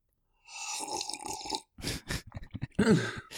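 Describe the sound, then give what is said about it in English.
A voice imitates slurping: one long, wet, airy slurp lasting about a second, then a quick run of shorter gurgling, sputtering bursts, moderately loud with no other sounds. “Can you make us a slurping noise”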